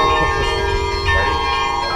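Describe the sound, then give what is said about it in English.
Bells ring out with sustained, overlapping metallic tones that hang steadily in the air, backed by a low rumbling wash, fairly loud and continuous throughout. “I guess the bells were supposed to be tracked in some actual thunder or something here.”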